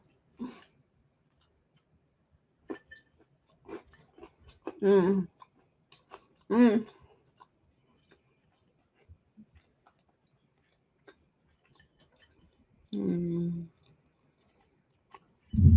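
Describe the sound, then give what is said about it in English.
Someone chews a crunchy, glazed blueberry scone: sparse, faint crunching clicks spread over several seconds, broken by a few short hummed vocal sounds and a louder burst near the end. “It's nice and crunchy on the outside.”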